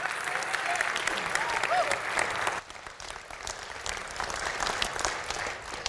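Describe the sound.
A crowd applauds with steady, dense clapping that stays loud throughout, briefly dipping midway before swelling again, with faint voices mixed in, as a man comes down to give a testimony.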